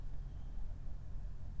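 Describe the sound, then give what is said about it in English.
A truck engine rumbles outside nearby as people get back in and load something into the back of the truck, a steady low idle drone that stays fairly quiet throughout, with no voices over it. “Oh, they're getting back in their car.”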